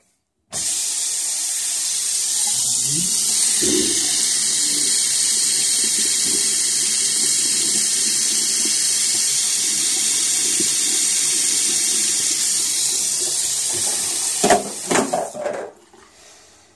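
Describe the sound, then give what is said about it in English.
A faucet runs steadily for about fourteen seconds as someone gets water, a constant hissing rush of water with faint clinks underneath, then shuts off with a few knocks as the flow stops. “This is how I get water.”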